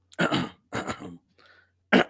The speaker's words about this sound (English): Let me clear my throat.